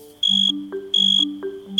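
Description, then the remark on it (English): A male cricket chirps by rubbing the toothed underside of its wings against a scraper on the top: three bursts of rapid, high-pitched pulsing trills, each about a quarter second long and evenly spaced, over a soft, low tonal hum. “Male crickets can use their songs to attract a lady cricket or to tell other male crickets to back off.”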